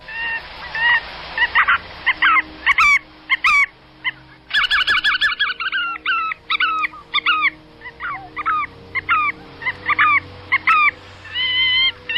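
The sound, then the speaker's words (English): A flock of bar-tailed godwits calling together, a dense chorus of nasal, honking yelps and chattering notes overlapping throughout, fairly loud with no voices. “And when there's a bunch of them together, they're collectively known as an omniscience of godwits, or a pantheon of godwits, or a prayer of godwits. Here are the calls they make.”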